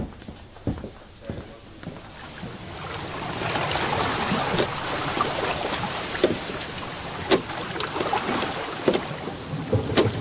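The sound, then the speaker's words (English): A boat makes a short crossing of the water toward Plan Palais: a steady rushing wash of water that swells after the first few seconds, punctuated by sharp, irregular wooden knocks and splashes. “During the short journey across the water, I saw the lightning playing on the summit of Mont Blanc in the most beautiful figures.”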